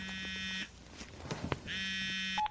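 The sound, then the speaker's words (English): A phone rings twice, each ring a steady, buzzy electronic tone lasting about half a second, separated by a pause of roughly a second. No one speaks. “The phone's ringing.”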